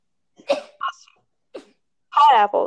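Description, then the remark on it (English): A person sneezes loudly, an odd, strongly voiced sneeze near the end, preceded by a few short, sharp breathy catches. “I'm about to sneeze.”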